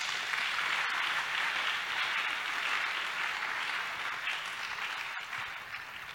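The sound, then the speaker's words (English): A church audience claps to God steadily for several seconds, a dense, even wash of many hands with no voices, holding its loudness before easing slightly toward the end. “I didn't see you are clapping to God.”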